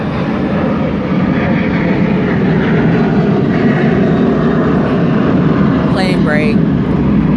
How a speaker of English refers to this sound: All right. That's what a plane is supposed to sound like.